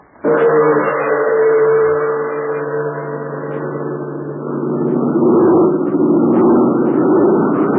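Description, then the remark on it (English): Jude Hennick's large American-made propeller airplane, flown for the Chinese Army, drones loudly overhead, its engines a steady, throbbing hum that starts abruptly and swells stronger partway through, continuous with no voices. “Yes, that's Jude Hennick's big American-made plane.”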